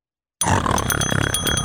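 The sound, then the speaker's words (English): After a brief silence, a voice bursts into a loud, harsh, grinding imitation of a kettlebell going through an industrial shredder, rattling and pulsing steadily with bright metallic ringing on top. “I would describe the sound as a kettlebell going through an industrial shredder. So if I could impersonate that.”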